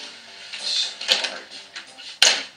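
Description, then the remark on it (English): A typewriter clatters in a short, uneven burst, with a couple of sharp key strikes standing out over a steady mechanical whir, with no one speaking. “Start typing?”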